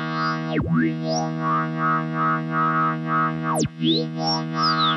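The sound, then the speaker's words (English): A steady, buzzy synth drone whose filter resonance is modulated by a standard sine-wave LFO from Doepfer. A whistling resonant peak swoops up and down in repeating waves, twice diving sharply low before rising again. No one speaks. “And then I'm using just a standard sine wave LFO from Dopefer going into the resonance.”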